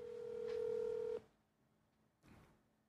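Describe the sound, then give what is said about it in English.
A telephone number being dialed to call a daughter: a steady, mid-pitched electronic tone holds for just over a second, then cuts off, followed by a short, soft burst of sound. No one speaks. “I'm going to call my daughter.”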